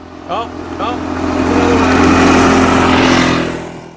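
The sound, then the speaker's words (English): A motor vehicle, not a scooter, revs and overtakes, its engine swelling louder toward the middle and fading as it goes. Brief chirpy sounds come early on, with a voice faintly underneath. “Was that a scooter sound effect? It didn't sound like a scooter. No, man, somebody just passed us.”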